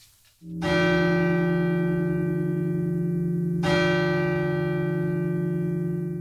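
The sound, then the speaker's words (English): A steeple clock bell strikes two o'clock on Christmas Day, two strokes about three seconds apart, each loud stroke leaving a rich, sustained metallic hum that rings on without any voices. “The steeple clock has just finished striking the second hour of Christmas Day.”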